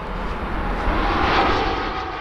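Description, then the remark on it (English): A small private plane's engine drones steadily overhead as it flies into Kansas City's Charles B. Wheeler Downtown Airport, a broad roaring rush with a deep low rumble underneath, swelling slightly midway through as it passes. No voices are heard. “Last year, on the day of the AFC Championship game, also against the Bengals, almost 400 private planes flew into Kansas City's Charles B. Wheeler Downtown Airport.”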